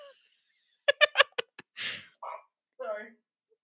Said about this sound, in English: Sorry. Bless you.